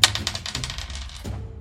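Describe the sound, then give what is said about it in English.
A six-sided die clatters across a tabletop during a game in a quick run of sharp clicks that tumble and slow over about a second before stopping, fairly quiet. “I rolled D6. Yeah, you rolled D6.”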